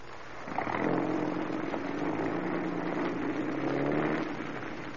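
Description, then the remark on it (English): A car engine hums steadily, its pitch rising slightly as a man gets into the car and it pulls away and keeps driving, with no voices over it. “He's getting into the car now. He's rolling.”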